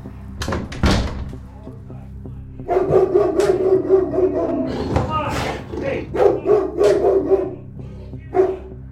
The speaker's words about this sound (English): That's a big dog. He's just very protective.